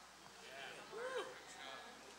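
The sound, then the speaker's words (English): A single drawn-out vocal 'amen' from a Baptist worshipper in church that rises and falls like a cow's moo, lasting about a second over faint murmur. It is a human voice resembling lowing, not an animal. “He's not mooing. That's just a Baptist that don't really know how to say amen”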